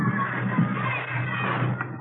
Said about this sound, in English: You start in a schoolyard like those kids down there, running around, yelling.